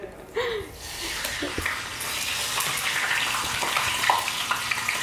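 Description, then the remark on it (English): Steady crackling sizzle of meat frying in a pan half an hour before sunset during Ramadan in Nashville, Tennessee, as the cook, from Alexandria, Egypt, stirs mulukhiya with the other hand; a dense hiss with scattered pops and clicks, a brief faint voice near the start and light clinks of stirring. “is frying meat with one hand and stirring the mulukhiya with the other.”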